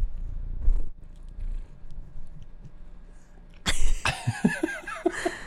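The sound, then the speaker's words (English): A cat purrs close to the microphone, a steady low rumble, then loud rustling and bumping noises break in over the last couple of seconds as if something brushes against the mic. “I'm telling you, she Kitty wants to ASMR.”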